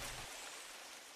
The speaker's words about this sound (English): It's raining at the Lake House. When it rains at the Lake House, there's not much to do.